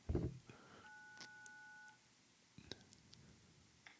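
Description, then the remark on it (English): A steady electronic keypad tone sounds for about a second, surrounded by light clicks and taps of buttons being pressed, with a soft breathy thump at the start and no talking, as a gate intercom is used to buzz an Amazon delivery in through the gate. “Let me buzz Amazon in the gate so they can eat breakfast.”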